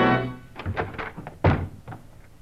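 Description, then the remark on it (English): FBI agents rush a bedroom door open with a flurry of heavy wooden thuds and bangs, the loudest slam landing midway, then a final softer knock before it settles. “in a quick movement, they rushed the door to Frank Hadley”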